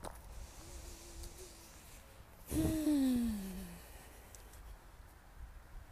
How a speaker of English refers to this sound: Long, deep breathing.